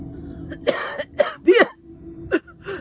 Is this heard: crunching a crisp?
no